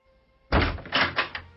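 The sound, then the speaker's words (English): A door thuds heavily shut against a foot, a loud impact after a brief quiet, followed by a few softer bumps and rattles as it stops short. “Would you please remove your foot from my door?”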